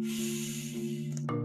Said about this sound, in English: Third one, practice mindfulness 1 minute. Inhale and exhale. Inhale. And then exhale.